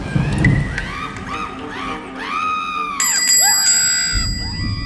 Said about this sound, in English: No need to be quite so persistent with the bell, sir.